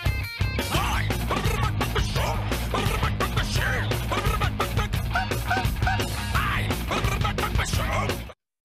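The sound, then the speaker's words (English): A man imitates a turkey call with his voice, a loud, continuous stream of rapid gobbling, honk-like sounds that lasts about eight seconds over a dense, steady background. “I think he's doing a bird call, man.”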